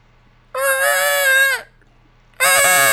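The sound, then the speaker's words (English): A voice imitates a car on the road ahead screeching its tires back and forth: a strained, high, sustained squeal lasting about a second that dips in pitch as it ends, followed after a short gap by a second loud squeal. “Like, car obviously screeching its tires.”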